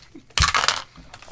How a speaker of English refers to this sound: Man, I just rolled all of my d20s and they were all terrible. For this initiative.